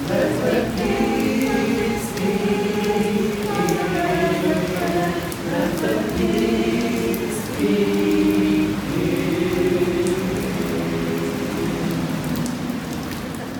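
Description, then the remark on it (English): Heavy rain pours in a steady, dense hiss for the whole stretch on a very rainy day in Sydney, with sustained tonal sounds rising and falling over it and no break in the downpour. “You have just heard my rough recordings made on a very rainy day in Sydney, exactly 18 years after the missiles rained down on Baghdad at the start of the disastrous war on Iraq.”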